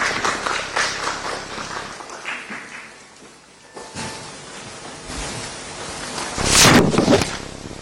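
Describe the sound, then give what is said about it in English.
A crowd applauds to welcome Reverend Dr. Ernest Edujemfi, chairperson of the National Peace Council, a dense patter of clapping that eases off midway, then swells again with a brief louder burst near the end. “Let's welcome Reverend Dr. Ernest Edujemfi with a round of applause.”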